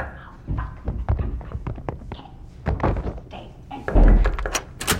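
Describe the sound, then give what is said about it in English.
A hotel room door being opened: a run of latch clicks, handle rattles and soft knocks, then a heavier thud near the end as the door swings and settles. No one speaks. “I actually didn't even look at you when I opened the door.”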